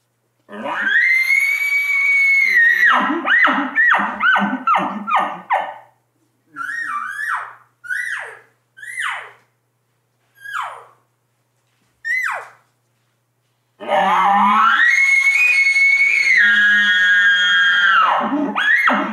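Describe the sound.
Elk calls blown on game calls, cow calls mixed with bugles: a long, high, whistling bugle with grunting undertones, then five short rising cow mews with gaps between, and another sustained bugle to finish. No talking.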